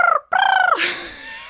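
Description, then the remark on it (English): A loud bird call with a rapid, gobbling warble that breaks off briefly, resumes, then slides down into a lower, rougher tail before ending. “Bird call.”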